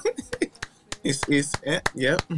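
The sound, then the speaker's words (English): A run of sharp hand claps in a loose, steady rhythm, about eight of them, cutting through over people talking or vocalizing throughout. “This is half clap. There's another clap as well.”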